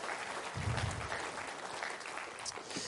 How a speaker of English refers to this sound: Can we get a round of applause for a muscle car? Yeah, absolutely.